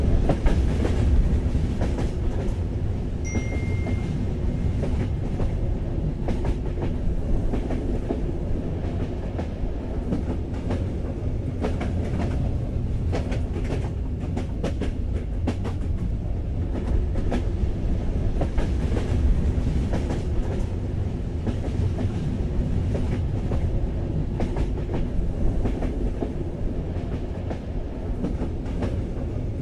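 A train rolls steadily along the rails with a continuous low rumble and a rhythmic clickety-clack of wheels, heard from inside a carriage with no voices.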